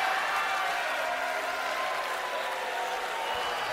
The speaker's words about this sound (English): You know what? I deserve to be booed.